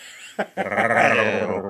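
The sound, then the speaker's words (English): A person's voice imitates a bear, letting out one drawn-out, bleating growl-like cry after a short grunt. The sound is loud and strained, lasting just over a second before tapering off. “Bears don't make that noise.”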